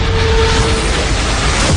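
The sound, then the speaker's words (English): A loud, dense roar like a sci-fi explosion effect of an alien ship attacking Earth holds steady for under two seconds, with a faint droning hum running through it and no voices. “Today, an alien ship attacked Earth.”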